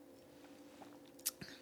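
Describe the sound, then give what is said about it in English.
A quiet, big sip from a glass of drink: soft wet mouth sounds followed by a couple of brief sharp slurping clicks near the end, with no talking. “Ooh, that was a big sip.”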